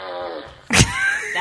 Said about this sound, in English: That is amazing. Alexa, make fart noises.